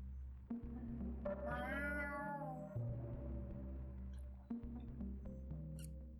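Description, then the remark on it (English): A single drawn-out cat meow rises and then trails off, soft and distant, over a steady low mechanical hum. No one speaks. “Faintly in the distance, you swear, you hear a cat?”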